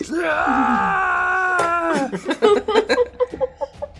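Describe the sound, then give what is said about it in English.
A voice imitates an anguished scream, one long, loud, strained wail held for about two seconds, then breaking into choppy vocal sounds and talk-like bursts. “He screams in anguish.”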